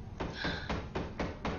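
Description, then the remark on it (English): Arnold knocks at the door of Michael Rapaport's apartment: five dull, thudding raps with no voices, a single knock, a short pause, then four evenly spaced knocks in a steady rhythm. “Anyway, so Michael Rapaport and his chair are interrupted by Arnold knocking at the door.”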